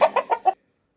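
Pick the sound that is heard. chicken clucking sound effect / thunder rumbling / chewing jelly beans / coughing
chicken clucking sound effect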